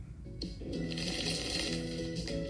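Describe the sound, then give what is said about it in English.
A body lotion bottle squirts out with a loud, fart-like sputter: a buzzy, rasping low tone that wobbles and crackles steadily for a couple of seconds with no talking. “Ew, what's that sound? They literally made it fart.”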